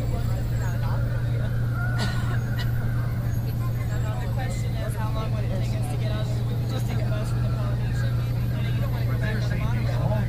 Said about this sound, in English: Please remain behind the yellow line while the bus is in motion and refrain.